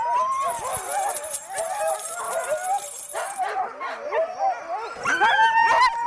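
A pack of sled dogs being hooked up to a sled barks, yips and howls excitedly all at once, a loud, continuous chorus of overlapping high-pitched yelps and whines, with no pause throughout.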